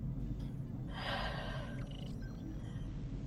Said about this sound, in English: And you hear the horrifying sounds of somebody struggling to breathe underwater.